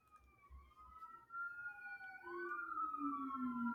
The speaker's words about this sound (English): Sorry, I'm gonna let those sirens pass by.